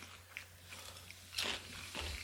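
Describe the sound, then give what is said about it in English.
Crunchy chewing, with a few sharp bites and a louder crunch midway, then softer mastication against a low steady hum; no one speaks. “Sorry for the crunching.”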